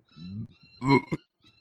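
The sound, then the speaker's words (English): A fairly loud burp: a low, throaty rumble that swells into a brief raspy peak, followed by a short second hiccup-like gulp, with no talking. “excuse me, I am burping everywhere.”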